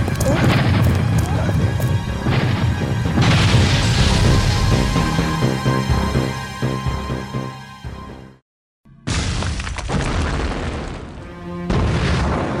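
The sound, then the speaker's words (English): Loud, rumbling explosions boom one after another amid crashing debris and chaotic clatter in a cargo bay during an attack, with blinding amber flashes, cutting out briefly before another burst of blasts erupts. “Blinding amber flashes accompanied the explosions in the bay.”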